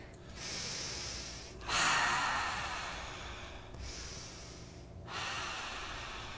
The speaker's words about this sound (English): Returning to our bodies. Breathing now. Yearning, breathing.